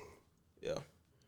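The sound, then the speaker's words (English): A person lets out a short, voiced yawn, one breathy burst with a slightly rising tone that swells and fades within a fraction of a second, with no talking around it. “Damn, I just yawned on this hoe.”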